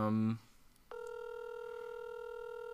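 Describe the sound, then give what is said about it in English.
A telephone rings with a steady, sustained electronic tone that starts abruptly and holds evenly to the end, preceded by a short buzzy burst of sound. “We weren't gonna answer the phone, so I'm gonna try.”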